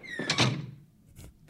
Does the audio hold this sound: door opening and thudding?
yes